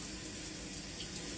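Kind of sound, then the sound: household object, shower water running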